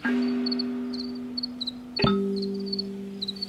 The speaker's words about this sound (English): The cricket songs are like the real point of entry into all of that.